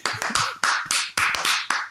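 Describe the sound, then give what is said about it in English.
Hands clap on the offbeat in a steady rhythm, about eight sharp claps in under two seconds, fairly loud with no one talking over them. “Can I join in on the clap on the offbeat?”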